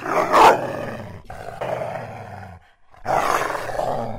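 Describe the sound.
A voice imitating a snarling hell dog while practicing being afflicted like the original four girls of Salem in 1692: rough, guttural growls and roars in two long bursts, loud and raspy, separated by a brief pause, with no words spoken.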